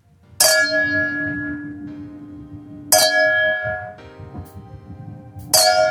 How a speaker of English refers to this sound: That sounded like... It was like a gong. Hold on, can we do that again?